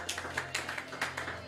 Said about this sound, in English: Hallelujah. Somebody give the Lord a mighty clap offering.